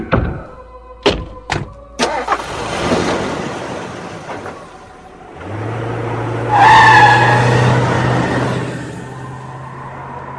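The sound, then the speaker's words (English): A car door slams a couple of times, then an engine revs up loudly and tires squeal as the car pulls away fast, the screech holding over a steady engine drone. “All right, well, I'll talk to you while we're in the car. Come on, let's go.”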